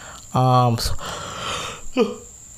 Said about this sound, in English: Excuse me, sorry, I'm yawning. It's late now, I'm recording this.